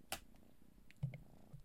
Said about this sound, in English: Sorry about that, you guys. I had to go put my freaking cat in a cage because she wouldn't stop messing with the cords, and all of a sudden I couldn't hear the audio anymore. And what she did, she chewed right through my daggone headphones.